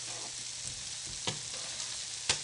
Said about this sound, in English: So here we have our beautiful freshly made pasta, and I'm going to put it in to the water, and you see it collapses immediately. I'm stirring it around so that it doesn't stick together. I'm just kind of fluffing it up in the water.